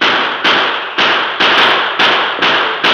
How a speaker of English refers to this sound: The distance was too great for accurate gunfire, and the bank thieves mounted and spurred their horses toward the west.